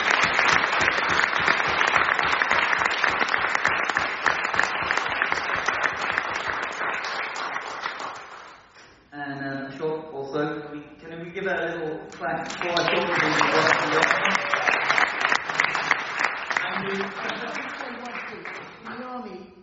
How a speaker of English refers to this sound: Can we all give a big round of applause to you?